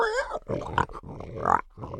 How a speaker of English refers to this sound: Oink, oink, oink. Hey, there is a pig in the yard.